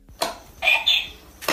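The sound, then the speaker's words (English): A dog, which its owner thinks she has taught to say the word "beach", makes a short, two-part, word-like vocal sound, high and tonal with a slight rise, preceded and followed by brief noisy bursts. No one speaks. “I don't think that's what the dog is saying because here we go.”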